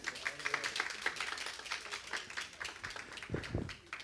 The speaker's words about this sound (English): All right, y'all can have a seat. Thank you. Give me a hand clap.